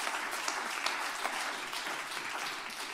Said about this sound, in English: Give the Lord a hand clap, because I made it all the way through without stopping again.